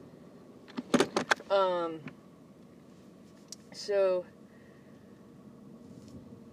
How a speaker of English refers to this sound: And sure if this guy's trying to turn in here. Sorry, I'm in my car.